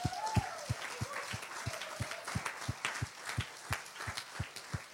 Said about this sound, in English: We're going to clap for her. She's an amazing 24/7 youth worker. Let's just give her a big clap.